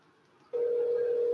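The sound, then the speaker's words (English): After a brief quiet moment, the steady electronic ringing tone of an outgoing phone call to a friend switches on and holds loud and unbroken to the end, a single sustained hum-like beep with no talking. “Ring.”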